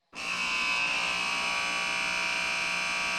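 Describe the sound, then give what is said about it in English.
A loud, steady electronic horn blares suddenly, signalling a segment change, and holds a constant buzzing tone for about three seconds, with no voices over it. “All right, there's the horn, so we're going to do our final buzzer segment.”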